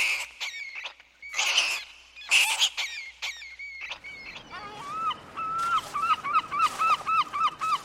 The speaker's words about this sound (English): The sounds of the sewer rats.